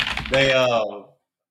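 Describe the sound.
Rapid clacking of keys on a computer keyboard, partly overlapped by a sustained voiced hum from someone, fading out after about a second.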